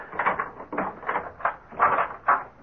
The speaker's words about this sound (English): Open the door, Boggs. Do you have the keys? Right, sir.